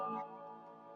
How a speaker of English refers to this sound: It's got a few more chimes left. Yeah, of course, it's 9 o'clock.